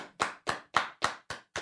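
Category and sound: crowd, hand clapping applause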